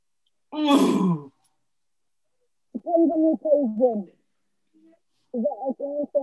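A bird calls in two short bouts of repeated, warbling notes, clear, following a brief rough, noisy burst at the start, with quiet gaps between.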